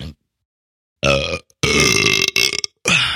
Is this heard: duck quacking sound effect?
no